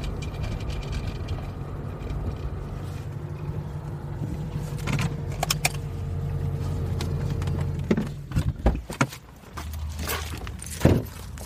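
A car engine hums steadily, then cuts out, followed by a few sharp knocks and scattered footsteps on the ground as people get out of the car and make a short walk to a memorial site.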